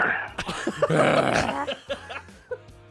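A man coughs and chokes up close in harsh, sputtering bursts, with a strained, gagging stretch in the middle and a few short hacks trailing off at the end.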